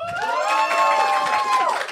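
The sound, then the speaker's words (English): A crowd votes by cheering and clapping for whether becoming a goo or dying in Evangelion is worse, loudly for about two seconds, with high sustained whoops and shouts rising over a dense wash of applause, with no single voice speaking. “All right, so clap if you think that it is far worse to become a goo or die in Evangelion.”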